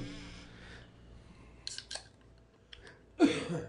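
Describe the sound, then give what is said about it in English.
A white beer can being opened: a couple of sharp metallic clicks from the tab, then a loud, fizzy burst of hissing gas. No one speaks. “I have to open this.”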